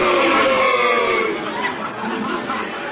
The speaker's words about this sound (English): why are they all saying a boo? They're trying to scare me?